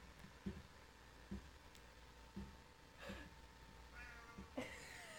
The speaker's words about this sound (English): Please welcome to the show, Paco, our cat. Paco! Doofy cat.